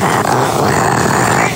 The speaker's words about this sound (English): Her name is Smooch. She's an English bulldog, so I think that might have something to do with it. Oh, that short snout. So she's got a snory face. Uh-huh. Have you ever heard an English bulldog snore?